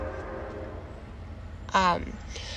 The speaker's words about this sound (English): I'm sorry, there's a very loud train going by right now.